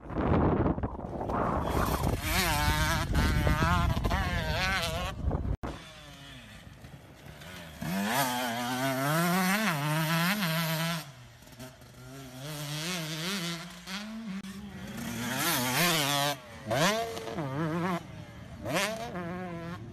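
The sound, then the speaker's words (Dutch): A new motocross bike's engine roars, first as a dense, loud blast, then revving up and down repeatedly in rising and falling whines as its rider prepares with it, with no one speaking. “En nou ja, we hebben ook een filmpje gemaakt met hoe jij eigenlijk de laatste weken bezig bent om je voor te bereiden met die nieuwe motor.”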